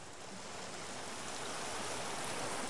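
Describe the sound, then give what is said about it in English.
Soft, steady river water laps and washes continuously at a moderate, even level, with no voices and no distinct splashes standing out. “kind of gentle lapping sound is very therapeutic.”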